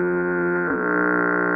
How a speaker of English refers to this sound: Yeah. I want an honorable mention foghorn.